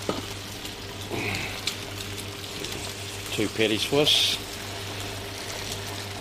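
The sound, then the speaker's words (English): Whitebait patties sizzle on an oiled hot plate in a steady, crackling hiss, with a constant low hum underneath and a voice speaking briefly partway through. “Sizzling away.”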